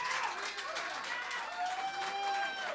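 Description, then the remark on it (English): An audience claps steadily and loudly through the whole stretch, a dense rattle of many hands, with a few voices and whoops rising above it, clapping to answer a question asked by round of applause. “Seriously, how many people in this room, by round of applause, had a teacher that got arrested for touching kids?”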